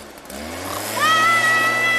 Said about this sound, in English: And I said, "Oh, don't wake my brother up with a leaf blower?"